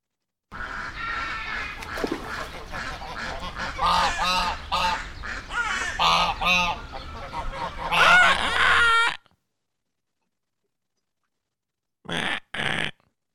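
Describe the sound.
A duck call is blown in a long, rapid run of raspy, honking quacks, loud, then falls silent before two final short quacks. No one speaks.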